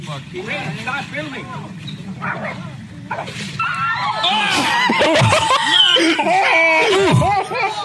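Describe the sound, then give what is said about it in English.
A dog yelps and whimpers in frantic, overlapping cries as a crocodile attacks it. The cries grow louder and more chaotic toward the end, with people's voices mixed in underneath. “Dude, that crocodile just snapped that dog's neck.”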